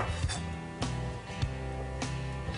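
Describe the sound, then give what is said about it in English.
A knife chops the ends off garlic cloves on a cutting board: four sharp, crisp thunks about half a second apart, over a steady humming musical background. “And we're gonna go and we're just gonna chop the end off of all our garlic.”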